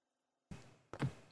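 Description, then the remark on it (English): A key is turned in the lock of a door with a pentagon carved into it: two dull mechanical clunks about half a second apart after a brief silence, the second heavier and more resonant, with no voices. “even without that, everyone hears the of the pentagon door unlocking.”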